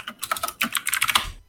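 Rapid typing on a computer keyboard, a quick irregular run of crisp key clicks filling about a second and a half, with no voices.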